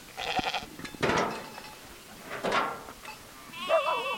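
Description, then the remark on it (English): Dozens of Angora goats and churro sheep crowded into a makeshift corral of pallets, plywood and fencing on Black Mesa bleat one after another, overlapping calls rising and wavering, with a quavering bleat closing the sequence. “dozens of Angora goats and churro sheep are crowded into a makeshift corral of pallets, plywood, and fencing.”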